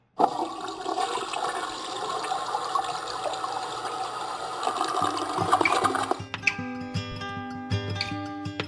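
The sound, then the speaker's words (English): A toilet flushes with a loud, steady rush of water for several seconds, then gives way to a quieter hissing refill with a faint whistling tone. “I flushed that sucker goodbye.”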